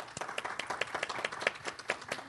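audience clapping

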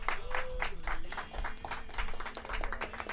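round of applause

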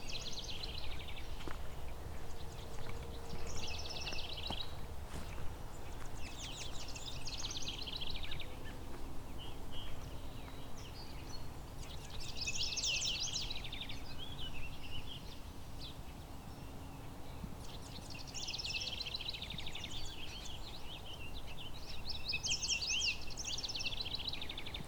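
house wren

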